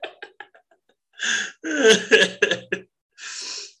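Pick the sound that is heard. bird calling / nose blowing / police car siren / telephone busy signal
nose blowing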